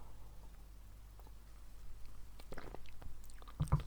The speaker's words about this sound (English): And I'm just going to take a quick sip of water. Please hold.